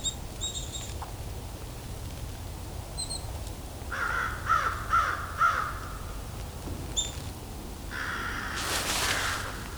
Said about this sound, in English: Crows here are pretty talkative today.